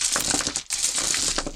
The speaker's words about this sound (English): Dice. Apologies for the dice noises.